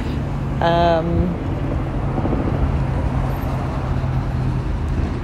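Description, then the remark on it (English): Steady traffic rumble fills the background throughout, a continuous low roar of passing road vehicles, with a brief tonal sound rising over it near the start. “So apologies for all the traffic noise and everything in the background.”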